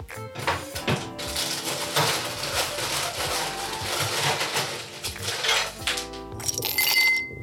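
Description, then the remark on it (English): Ice cubes for a Johnny Walker highball with ginger beer clink and rattle into a glass in a dense, continuous clatter of small hard knocks, fairly loud, with a few bright chimes near the end. No one speaks. “So, as usual, we're just going to need some ice.”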